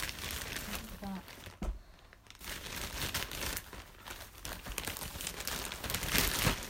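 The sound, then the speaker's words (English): Crinkly plastic and paper packaging rustles and crackles as a large chocolate frog candy box with a card inside, bought at the Wizarding World of Harry Potter at Universal Studios Hollywood, is unwrapped, with steady crumpling that pauses briefly and then returns with sharper, louder crinkles. “It's a chocolate frog from, and there's a card.”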